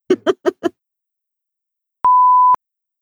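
A single steady computer beep, a clear mid-pitched tone holding for about half a second, comes after a quick run of four short, low voice-like bursts and a pause.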